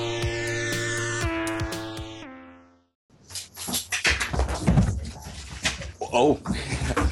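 A short musical outro fades out, then two dogs, one named Phoenix, whine and whimper close to the microphone, with snuffling and rustling handling noise between the high, wavering cries.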